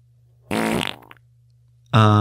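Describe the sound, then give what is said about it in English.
Two loud, buzzy fart sounds, the first a long rasping blast that sputters out, then a second sharp one starting after a short pause, close up with no talking. “And it's all thanks to his dead dog farts.”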